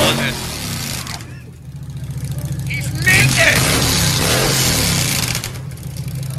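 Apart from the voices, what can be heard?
motorcycle engine revving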